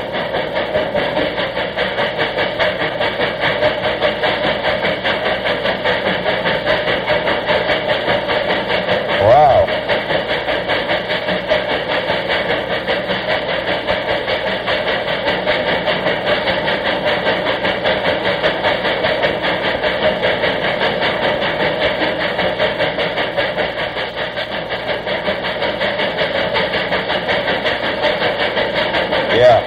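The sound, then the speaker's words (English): The steam locomotive the General rumbles steadily through a tunnel, a loud, continuous, enclosed roar with a droning hum that never lets up, broken only by a brief low thump partway through. “Yeah, this is the General going through a tunnel.”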